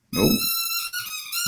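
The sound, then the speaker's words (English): A dog squeezes a squeaky chew toy, which lets out one long, loud, shrill squeal, wavering slightly in pitch, with a soft thump at the start and no voices. “They put the dog down here. Stand by. Yeah. Take man, that chew toy away.”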